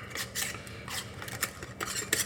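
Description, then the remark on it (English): A metal lid being screwed onto a glass jar of custard before sous vide cooking: a quick series of short, gritty scraping rasps as the lid turns on the glass threads, with no voices. “The little jar lid on top.”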